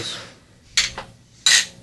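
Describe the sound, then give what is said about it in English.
Glasses of a fizzy red drink clink together in a toast: two bright, ringing chinks about two-thirds of a second apart, the second one louder, with a faint rustle in between and no talking. “Cheers is fine. Cheers.”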